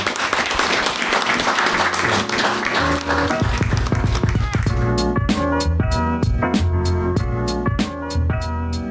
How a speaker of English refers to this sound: Before we get into Q&A, I'd love to just a little round of applause for the guys for being so appreciative.